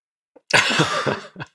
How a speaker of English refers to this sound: Sorry, I'm sneezing and coughing at the same time.